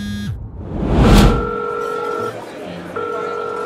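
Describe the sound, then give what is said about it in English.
A call to a cell phone rings out with no answer: a steady electronic ringing tone sounds for about a second, pauses, then starts again over a low background hum, after a brief whooshing swell. “But at the same time, Canny's best friend, Noreen, was calling her cell phone.”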